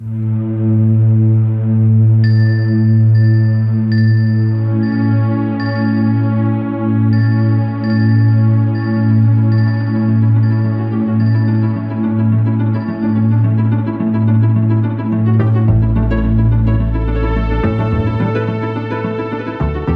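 Wintry Super Nintendo-style video game music plays alone: steady, droning low synth pads under a repeating chime-like high melody, with an airy, hissy texture building toward the end.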